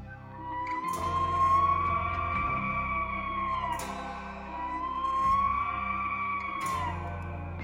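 A Roosevelt elk bull bugles twice in a row, each call a long, high, wavering whistle over a rough, low roar, with short sharp cracks between calls. Fairly loud, with no voices.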